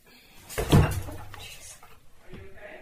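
A heavy wooden thump with a brief creak as someone drops down into a rocking chair that is lower than they expected, followed by faint rustling and shifting.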